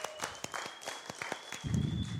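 An audience claps in scattered, uneven bursts of sharp hand claps. A faint steady high tone runs beneath, and a low rumbling murmur joins toward the end.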